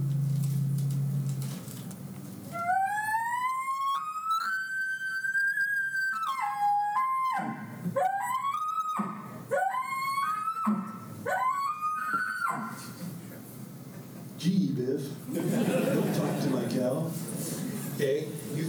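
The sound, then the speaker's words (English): An imitated elk challenge bugle: a long, high, whistling scream that rises and holds, followed by a rapid run of five or six sharp squealing notes, each swooping down and back up. “This is what a challenge bugle sounds like.”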